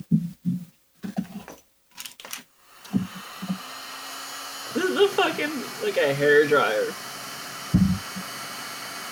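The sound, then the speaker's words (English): A heat gun roars with a steady blowing hiss that runs through the second half, after a few dull low thumps, with people talking over the airflow. “Fucking like a hairdryer. Yeah, I mean, as cool as that rips, it makes sense why a heat gun wouldn't catch on either.”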